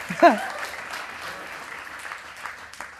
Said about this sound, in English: Yeah, you can cheer for God's grace. That's a good thing to cheer for.